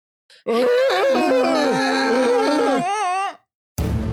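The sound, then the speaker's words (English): A voice imitates a strange deer call: a loud, warbling, moaning cry with layered, wavering tones that slides around for about three seconds, then trails off into a rising quaver. “So instead, here's that weird deer noise that we made from those Feywild episodes.”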